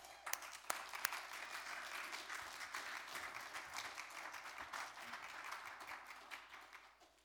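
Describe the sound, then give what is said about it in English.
Sustained applause from an audience as a speaker is called up, a dense, crackling wash of many hands clapping at steady loudness for several seconds before tapering off at the end. “Jesus, appreciate your applause.”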